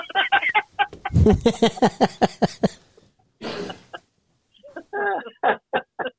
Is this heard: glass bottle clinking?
no